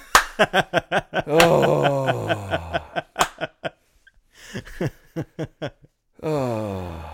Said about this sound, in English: Oh, slow clap.